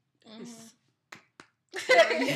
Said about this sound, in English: She's trying not to clap too loud. Oh, girl, I had to clap on that.